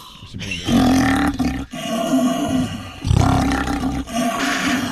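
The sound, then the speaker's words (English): A person imitates a lion's roar by snorting and hissing through an empty paper towel roll, producing a loud, hollow, snorting growl that swells and repeats in sustained rumbling bursts. “Let's get ready for Lion King with the Roar Challenge. Empty paper towel roll, snort, and a hiss.”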